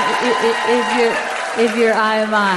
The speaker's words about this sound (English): Oh, you can give the Lord a better clap offering than that.